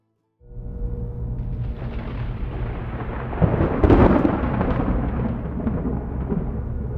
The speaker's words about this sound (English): Deputy Waylon Dupree winced when the first wave of thunder shook his patrol car. It was low and rumbling, as if the earth beneath him were crashing through the canopy of asphalt to take hold of him.